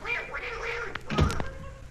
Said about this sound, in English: That duck out there just bit me on the ankle. Oh, now, don't be silly. A duck has no teeth.